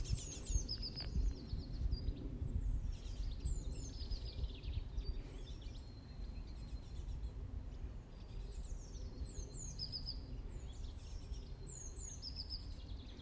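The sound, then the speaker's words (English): Several birds chirp and trill high above a steady low rumble of outdoor ambience in the fresh air on a sunny day, their calls repeating in short bursts throughout, with no one talking. “I want to invite you for a second to just listen to the bird sounds and just embrace and enjoy it.”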